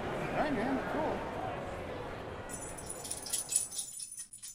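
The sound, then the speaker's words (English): Collar tags jingle in quick, rhythmic metallic bursts as a puppy scratches itself, following a few seconds of muffled voices and room noise. “So if you hear that jingle right now, that is our puppy scratching himself and vibrating his collar.”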